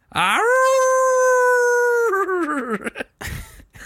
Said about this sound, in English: A werewolf jumps out. A mournful howl pierces the silence.